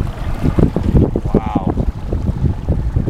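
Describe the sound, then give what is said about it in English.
A killer whale's breath right beside a boat running alongside killer whales: a single brief whooshing exhale with a faint tonal edge, rising midway through steady wind rumble and boat noise on open water. “Could you hear the breathing? The thing was like right beside me.”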